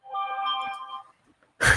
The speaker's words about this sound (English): See what happens when you forget to put your phone on silent? I should learn, huh?